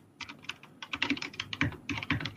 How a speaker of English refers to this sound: Are you typing us a love letter? Is that what you're... ordering some lunch online? What's going on over there?